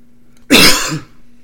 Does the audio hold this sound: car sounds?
no